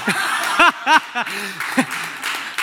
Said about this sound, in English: All the people clapping are the people that want to go take over Area 51.